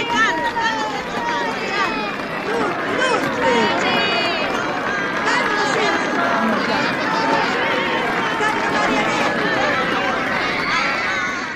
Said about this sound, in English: Okay, so you hear the screams of the crowd as Johnny Fontaine arrives at the wedding all the way from California to pay his respects.